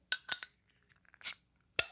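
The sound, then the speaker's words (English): A bottle of IPA beer being opened: a few bright glassy clinks, then a short sharp hiss as the cap comes off, followed by another clink against glass. No one speaks. “Let's crack this one open.”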